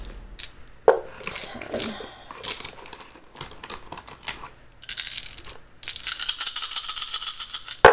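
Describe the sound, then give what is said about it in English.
A dense clatter of 29 four-sided dice (d4s), rolled as sneak attack bonus dice in a tabletop role-playing game, tumbling and rattling, bright clicks piling up in bursts and swelling into a loud, continuous rattle near the end, with faint voices underneath. “This is like a lot of dice. How many dice did you roll,”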